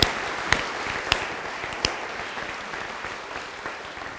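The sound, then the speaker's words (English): An audience claps steadily for several seconds, a dense patter of many hands with a few sharper, louder claps early on, gradually thinning and softening toward the end. “I think we should give them a round of applause, don't you?”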